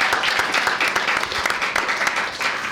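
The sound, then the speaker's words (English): A steady round of applause from a crowd, dense overlapping claps forming a continuous bright wash that holds at an even, fairly loud level throughout, with no talking over it. “Give him a round of applause, everyone, please.”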